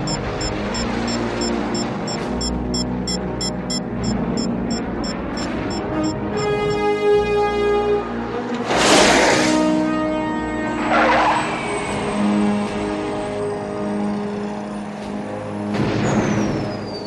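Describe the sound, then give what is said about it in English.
A small BD-5 jet aircraft taxiing, its engine giving a steady high whine that rises and shifts in pitch, broken by several loud rushing blasts of exhaust. No one speaks. “These planes we used, the BD jets, they were built for a previous”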